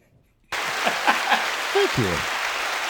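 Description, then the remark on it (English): After a brief silence, loud, dense applause bursts in and continues steadily, with a few shouted whoops and cheers rising above the clapping. “I was going to make some joke about the cheering stopped when I put my penis away, but that's not appropriate for the podcast.”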